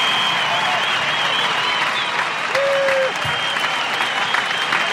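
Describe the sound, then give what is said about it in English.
A crowd applauds and cheers steadily for the full five seconds, a dense, loud wash of clapping with whoops and shouts rising above it, one high voice briefly standing out. “That's a lot of cheering.”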